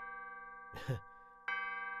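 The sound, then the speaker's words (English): A clock strikes the hour, with steady ringing bell tones throughout, a noisy clang partway in and a second bright chime that swells again near the end. No one speaks. “Wait, the clock is striking 11? 12?”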